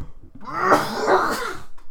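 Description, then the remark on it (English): A person clears phlegm from their throat with a harsh, phlegmy rasp, followed by short wet coughing sounds, fairly loud, with no talking. “I have some phlegm that's trying to escape right here in my throat.”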